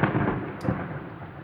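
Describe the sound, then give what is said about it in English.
A deep, rolling rumble of thunder from lightning striking a giant building every few minutes, loud and continuous with a brief crackle near the middle, and no voices. “Maybe a little bit further from the giant building that keeps blowing out my eardrums every few minutes with lightning strikes.”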